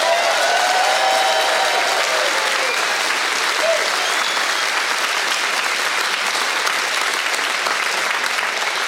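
A church audience claps loudly and steadily for about nine seconds for two church staff members who prepared for Holy Week, a dense, continuous wash of applause with a few faint voices rising briefly within it.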